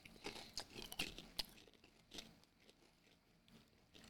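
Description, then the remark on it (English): A bite into a crunchy Cinnamon Toast Crunch-flavored snack, followed by several crisp, irregular chewing crunches that grow quieter and softer toward the end, with no talking. “I'm going Cinnamon Toast Crunch first.”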